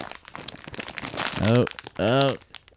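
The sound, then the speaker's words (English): A plastic stuffing package crinkles and rustles in busy, irregular bursts as someone struggles to tear it open, with two short strained voiced sounds rising over the crackling. “All right, he's trying to open it.”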